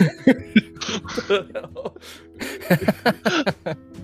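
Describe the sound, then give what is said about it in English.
A man hacks and gags in a string of rough, throaty coughing bursts, like coughing up a hairball, with strained voiced retching between the sharp spasms. “What, did you just cough up a hairball?”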